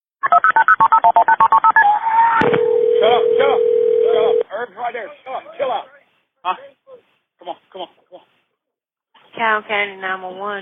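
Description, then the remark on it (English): A rapid run of telephone keypad tones dials a number, followed by a single steady ringing tone lasting about two seconds. Then voices talk in bursts over the line: a 911 emergency call about a boating accident on the Congaree River in Richland County, South Carolina, in May 2020. “Here is the 911 call.”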